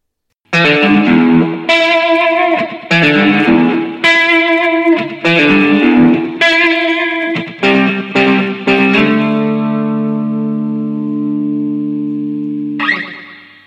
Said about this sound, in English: But before we get anywhere near close, I know I just heard a bit of reverb there, we'll start off with a little bit of that twangy guitar.